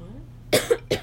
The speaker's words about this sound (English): And that's why people cough when things are spicy. Because it tickles their throat. Or it irritates their throat.